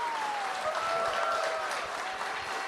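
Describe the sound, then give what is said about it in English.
A crowd of people claps steadily in dense, continuous, loud applause, with a faint whistle-like tone gliding across the noise as the clapping holds throughout. “Give them a big applause.”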